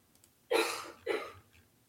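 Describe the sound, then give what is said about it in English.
A sneeze in two quick, forceful bursts about half a second apart, sharp and breathy, with quiet surrounding it and no one talking. “Bless you.”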